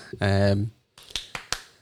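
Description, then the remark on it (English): A short sustained vocal tone gives way to three sharp hand claps in a quick rhythmic burst like the clap in the Friends theme, each crisp and distinct, with a brief pause before them. “It's like the Friends clap.”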